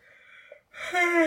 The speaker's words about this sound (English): I hate yawning. I agree. Okay, well, it's past someone's bedtime. It's past mine. It's very late.